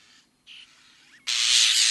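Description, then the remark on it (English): A European starling (Sturnus vulgaris) calls alone, fairly loud: a few thin whistled and squeaky notes, then a long, harsh, hissing rasp that fills the last part. “The scientific name for the starling is Sternus vulgaris, and quite frankly, its call is as pretty as its name.”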